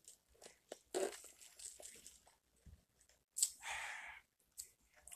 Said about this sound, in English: And before we even do that, I'm going to take myself a sip of some vitamin water because I know it's going to be a very long show.